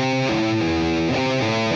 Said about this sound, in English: Which leads me to actually to a very cool effect. Pull off from the 8 to the 5 to the open on the low E.